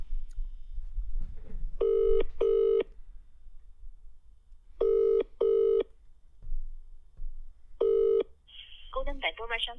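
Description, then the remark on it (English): A prank telephone call to a restaurant rings out on the line in paired buzzing tones, repeated three times with gaps between, over a low background hum, before a voice starts talking at the end. “They said, why don't you call a restaurant, pretend to be locked in the toilet, saying that you're out of fucking toilet paper.”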